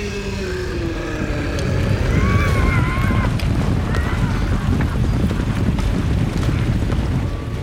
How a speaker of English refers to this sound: Look out! A chariot flew down the mountain path. It was led by hell horses, red-eyed and foaming at the mouth. And in the carriage, Ravana.